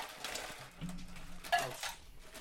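Ice cubes are grabbed by bare hand from a container for drinks, one at a time, making a few quiet, scattered clinks and rattles over a low background hum, with one sharper clink partway through.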